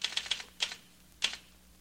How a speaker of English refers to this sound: I can type and listen. I'm typing while I'm talking to you, aren't I? Yes, but talking is second nature to you. Listening requires concentration. Sure, but typing doesn't.